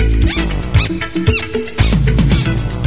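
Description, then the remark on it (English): Shoes squeak repeatedly in short, high, bending chirps over loud, dense brassy music that runs the whole time. “Then the horns kicked in. My shoes started to squeak.”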